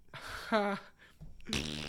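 A voice imitates a fart with a few buzzy blurts, the last one longer and louder, separated by short pauses.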